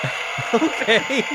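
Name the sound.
applause sound effect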